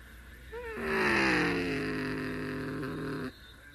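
A race car engine on a track revs up sharply, then holds a steady, buzzing high-pitched drone for a few seconds before cutting off abruptly, loud.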